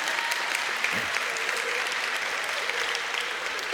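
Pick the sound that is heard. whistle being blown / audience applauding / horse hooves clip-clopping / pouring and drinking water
audience applauding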